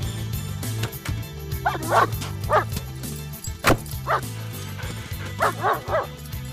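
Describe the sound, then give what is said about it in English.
A dog barks and yips in short bursts, several sharp calls spaced irregularly, over a steady low background hum or music. “That's a good dog.”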